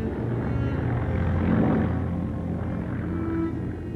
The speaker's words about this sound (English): This dramatic woodcut gives us some idea of the scene as German planes flew over the house on their way to bomb London.